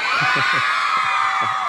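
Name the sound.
audience screaming and cheering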